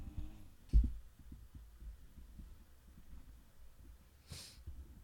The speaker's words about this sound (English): The dogs snoring will be picked up on this. And make sure to point that out.